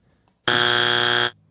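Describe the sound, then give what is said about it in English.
A single loud, harsh game show wrong-answer buzzer blares for just under a second after a wrong answer to a golf trivia question, a flat, steady buzz that cuts off abruptly, with no one talking over it. “I have a buzzer for that.”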